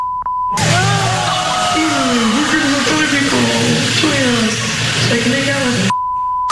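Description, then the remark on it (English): A steady electronic censor beep sounds briefly, then a loud, garbled stretch of a woman's phone call with her mother plays over heavy noise, and the same flat beep returns at the end. “And so my wife was watching, and she just told me about this the other day, and they bleeped it out, and then they put words underneath there.”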